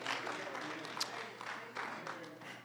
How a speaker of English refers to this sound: Are there any thankful folk here today? Come on, clap those hands. And tell the Lord, thank you.